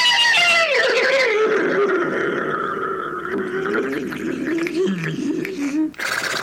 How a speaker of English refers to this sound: And in the words of Henry, the hysterical horse...